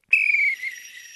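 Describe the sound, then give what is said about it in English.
A single shrill whistle blast starts abruptly and holds a steady piercing tone for about a second, loud at first and then easing slightly as it trails off, with no one talking. “It's called a crescendo with the whistle, okay.”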